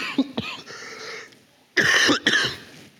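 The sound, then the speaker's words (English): A man coughs and clears his throat in church in a loud cluster of bursts, with two short hacks early on and a harsher, longer double cough near the end. “I was not coughing this much before I came to church this morning.”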